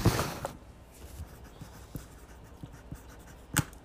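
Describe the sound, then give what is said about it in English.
A pencil with the wrong lead scratches steadily across paper in short strokes as someone writes part of a book, fairly quiet, with a sharp little snap near the end as the lead breaks. “I've got the wrong lead in this pencil. And it's making me mad. Because it keeps breaking.”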